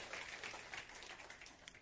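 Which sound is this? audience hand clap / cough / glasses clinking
audience hand clap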